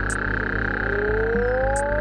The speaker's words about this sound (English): As a result, there is very little antagonistic behavior between males, who instead focus on acoustic displays to attract attention. Their loud, distinctive call has earned the Mexican burrowing toad the nickname Sapo Borracho, or Drunken Toad.